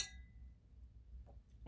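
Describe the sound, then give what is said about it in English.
A single bright clink of wine glasses in a toast with red wine rings out at the start and fades quickly, followed by a few soft knocks over a low background hum, with no talking. “So, we have a nice red. Yes. Do we want to... Cheers and drink it.”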